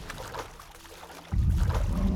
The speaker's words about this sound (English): He snaps its neck and tosses the creature back into the water without pause.